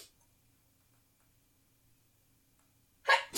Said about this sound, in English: Hold on one second, I think I'm gonna sneeze.